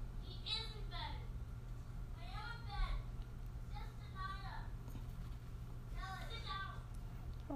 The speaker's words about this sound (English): I can hear them talking. Well, let them talk. Let them talk themselves to sleep. Listen, he's whispering.